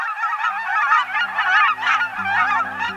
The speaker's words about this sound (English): Look and listen for pint-sized cackling geese this fall at refuges, in farm fields, and at other spots where migratory geese gather.